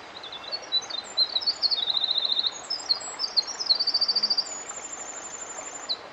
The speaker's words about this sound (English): Yes! I love this bird. It's a winter wren. Listen to how long its song is.